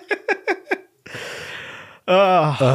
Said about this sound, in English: Yeah. I keep yawning.